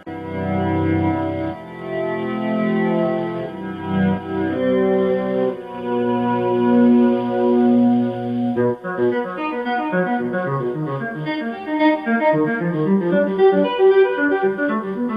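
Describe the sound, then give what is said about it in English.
An electric guitar solo played in one take by hammering notes while working the volume knob on and off, so notes fade in without a picked attack, drenched in echo and chorus; slow layered chords give way to a faster rippling run of overlapping notes. “By hammering notes, and he's actually working the volume knob on and off, so you don't hear the hit, you just hear the sound.”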